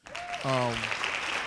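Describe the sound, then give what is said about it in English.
A burst of steady, dense hand clapping like applause fills about a second and a half, with a short tonal vocal whoop or cheer rising over it near the start. “Hand claps to that.”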